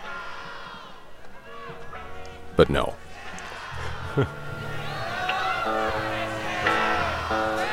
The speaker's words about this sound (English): And the crowd is yelling louder and can't hear you.